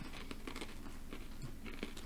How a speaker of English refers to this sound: Oh my god, we shouldn't have ate these cookies. I can hear all the chewing.